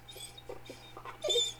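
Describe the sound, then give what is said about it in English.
A dog fusses in a living room with a few short, soft whiny yips, ending in a louder, drawn-out whimper. A steady low hum sits underneath, and no one speaks. “Why is my dog fussing when I'm trying to record?”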